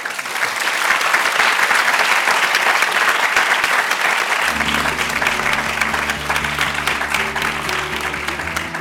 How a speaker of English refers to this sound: But I would like you all to please give a round of applause to the speakers.